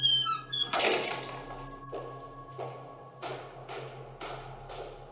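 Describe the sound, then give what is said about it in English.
A heavy, watertight bronze door set in the base of a lighthouse on a bare black rock creaks open with a high, grinding squeal, followed by a few dull, scraping bursts as it swings. Moderately loud, with no voices. “Set in the base of the light was a watertight bronze door.”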